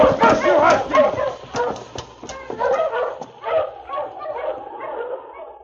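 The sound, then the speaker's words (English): A team of husky sled dogs bark and yip excitedly together as the team is urged to start, a dense overlapping clamor of sharp calls that keeps up steadily before easing slightly toward the end. “Go ahead, start his team. It's yours now. Marsh! Marsh, you huskies!”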